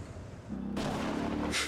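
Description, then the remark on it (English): A thunder effect from a sudden lightning strike in John Wick: a loud crack bursts in and rolls on as a sustained, roaring rumble over a low droning hum, with no voices. “John Wick with the sudden lightning strike.”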